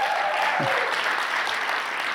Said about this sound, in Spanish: Oye, yo esperaba un aplauso más grande para ese chico.